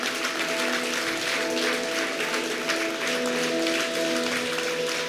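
A crowd applauds people coming forward after being called to make a decision for Jesus, a dense crackle of many hands clapping continuously for about five seconds, with sustained musical tones humming underneath.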